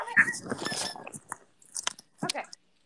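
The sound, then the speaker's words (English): Wet crunching and gnawing in quick irregular bursts as a dog chews hard on a toy, with brief pauses between bouts of biting. “Stop, you're disrupting the podcast. I need to take your toy away.”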